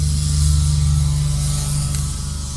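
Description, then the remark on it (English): A steady, loud low drone of a truck spraying the county roads for mosquitoes, its engine humming with a buzzy hiss on top, continuous and unchanging with no voices. “They're spraying the county roads out here for mosquitoes.”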